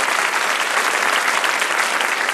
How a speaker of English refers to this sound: And it was, I applaud both sides for going to that point and for a very, very spirited debate from both teams today. I'd just like to give them a round of applause.